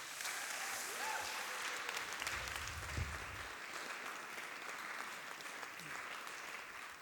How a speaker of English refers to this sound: Let's give her a big cheer.